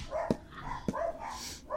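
An old dog on the back of a couch barks twice in sharp, separate bursts, with softer yelping tones in between, moderately loud.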